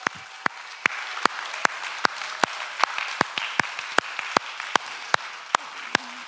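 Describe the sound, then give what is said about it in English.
A crowd applauds in the Story City Church auditorium during a morning service, a steady crackle of many hands with a few loud claps landing in a regular rhythm over about six seconds. “And go ahead, we can clap this morning.”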